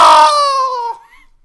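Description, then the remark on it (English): A person lets out a single loud, piercing shriek imitating a pterodactyl, a strained, harmonic-rich cry about a second long that dips slightly in pitch before cutting off into quiet. “Pterodactyl calls are protected speech.”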